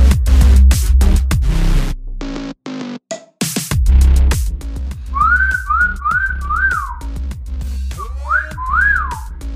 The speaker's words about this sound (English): Who are you whistling at? No one.